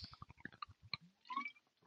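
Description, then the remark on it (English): Someone gulps down a drink of water in a quick, rhythmic run of wet swallowing sounds, followed by a short breathy exhale with a faint rising squeak. No one speaks. “I was a double gulper.”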